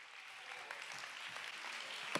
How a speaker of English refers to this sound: Somebody ought to stand across this building, clap your hands, and give the Lord some praise.